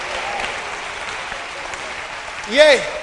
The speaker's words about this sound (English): Everybody stand to your feet and give the Lord a clap of hands. Amen.